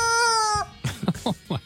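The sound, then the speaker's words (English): A rubber chicken, squeezed by hand, gives one loud, sustained, nasal squeal with a slight drop in pitch at the end, followed by a few short bursts of people talking. “And you know the sound the rubber chicken makes. Yeah. when you squeeze it, right?”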